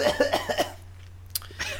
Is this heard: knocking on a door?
no